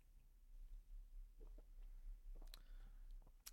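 Quiet mouth noises as someone tries a sip of a bubblegum-flavoured drink and swallows, with a few wet clicks and a gulp spread over a few seconds, no talking.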